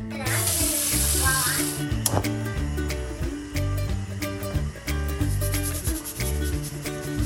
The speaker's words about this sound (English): All right, let's throw these in the pot. Yes. Add some cold water and then some salt.